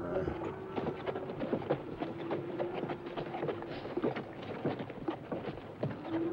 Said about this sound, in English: There's the kid's horse. He ain't on it.